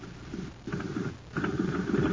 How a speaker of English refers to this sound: Say, gang, talk about a putt-putt. Just listen to this jet cycle.